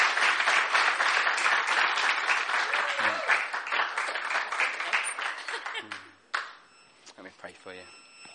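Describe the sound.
An audience breaks into steady, loud applause that fills about six seconds, then quickly dies away while a voice speaks over the last scattered claps.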